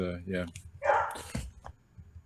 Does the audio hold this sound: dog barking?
yes